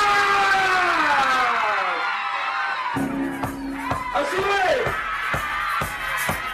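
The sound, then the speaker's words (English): A crowd cheers and makes noise for a six-year-old DJ, with loud whoops and a wavering siren-like tone sweeping over the roar, then sharp rhythmic beats punching through the noise. “Make some noise for …!”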